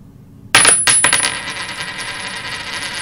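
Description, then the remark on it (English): The first coin is dropped onto a hard surface with a sharp metallic clink, bounces a few times in quick succession, then rings and settles into a fading shimmer. Fairly loud, no talking. “I'm gonna drop the first coin.”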